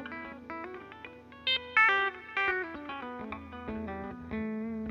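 An electric guitar with effects runs quick legato hammer-on notes up and down a scale, a smooth, flowing line where some notes ring louder and others barely sound. Nobody talks.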